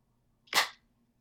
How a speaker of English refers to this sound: Can I have clap? Really? Clap number one.